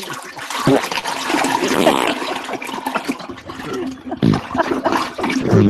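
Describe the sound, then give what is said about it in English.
A toilet flushes with a loud, steady rush of swirling water that gurgles and fluctuates over several seconds, with brief voices breaking in near the end. “Really good bathroom noise. I've never let the toilet one continue.”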